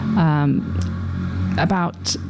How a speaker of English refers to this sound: That was a very noisy motorbike that went past.